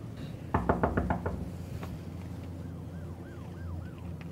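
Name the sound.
knocking on a door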